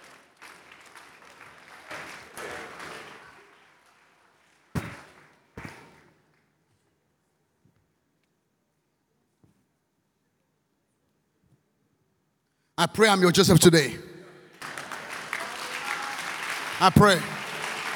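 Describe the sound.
An audience breaks into loud, sustained clapping that swells after a long quiet stretch, while a man keeps preaching over the applause. Softer scattered clapping and talk come earlier.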